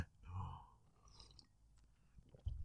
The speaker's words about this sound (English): I'm going to take a sip of coffee.